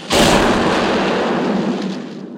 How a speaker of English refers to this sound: And he heads towards the plunger, and then an explosion hits, a mortar hits, and he goes down.